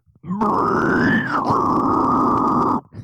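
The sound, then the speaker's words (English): A deathcore pig squeal vocal: one loud, sustained, raspy squeal held for about two and a half seconds with a slight pitch rise and dip midway, then cut off abruptly. A human voice imitating a pig, done by a former deathcore and metal vocalist. “I can back do like to pig it. Squeals.”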